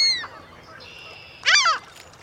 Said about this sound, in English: Hollow bones help birds like this herring gull sail around in the air without using much energy.